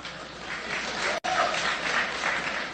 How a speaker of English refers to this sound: Now, first off, yes, this was at Berkeley, and so you see that there was just a small, applause when he said young people are going to have to pay more because they're young people. In fact, it sounded like only one person was doing the clapping.